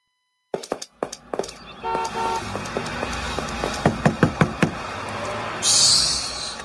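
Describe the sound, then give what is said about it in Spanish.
Sharp knocking on a door comes in two quick bursts of several raps each, with a short horn-like toot between them and a brief hissing rush at the end. “Mira, avanza a abrir la puerta. Chacho, hombre, toca el timbre.”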